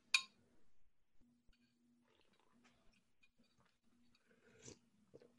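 Quiet slurping of hot coconut broth: a sharp sip at the start, soft mouth noises and smacking in between, then another slurp near the end. No one speaks.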